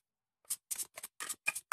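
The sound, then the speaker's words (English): A deck of cards being shuffled hard: six crisp, rapid bursts of papery snapping in a quick, fairly even rhythm, with no voices. “Super aggressive shuffle.”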